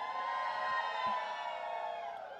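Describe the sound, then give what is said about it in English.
An audience screams and cheers together, a dense wall of high, overlapping voices that holds steady for the whole stretch and tapers only slightly at the end. “Somebody ought to scream in here.”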